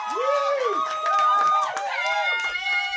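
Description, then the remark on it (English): A small control-room crew gives a round of applause, cheering and screaming loudly, with high whooping voices overlapping and a few scattered claps throughout. “Yes, everybody, control room round of applause. Let's hear it.”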